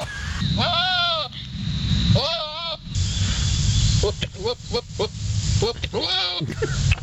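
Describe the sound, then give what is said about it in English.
A goat bleating during mating: a few loud, quavering, drawn-out cries with shorter rough grunting calls between them, over a steady noisy background. “Do we have a goat mating on deck here for people who haven't experienced this yet?”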